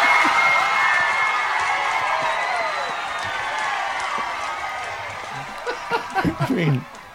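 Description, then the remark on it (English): A large crowd roars in a dense, steady wash of voices that slowly fades, with scattered claps and a few sharp bursts of cheering near the end. “I mean, did you hear the crowd?”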